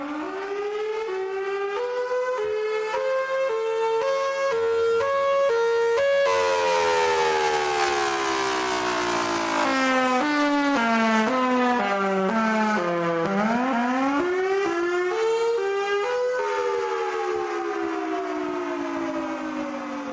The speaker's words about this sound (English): That sound you're hearing is what the people of Amjanong First Nation hear every Monday at 12:30 p.m. It's a test siren. It also goes off when one of the plants reports a spill or release of toxic chemicals.